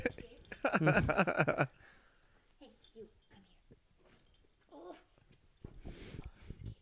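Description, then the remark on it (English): The speaker's dog, Stella, lets out a burst of excited, high-pitched whimpering and yipping as it jumps on a guest, then quieter whines and snuffles follow as a person speaks softly. “as you get attacked by my dog.”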